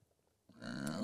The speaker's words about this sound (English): Like burped and... I don't know what I did.